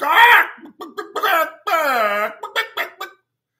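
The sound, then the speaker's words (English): A person mimics chickens clucking to mock the TV show The View and its 'chicken heads': a rapid run of short, loud clucks with a longer warbling squawk in the middle, then a few more clipped clucks before it stops. “Put it on The View with a bunch of chicken heads.”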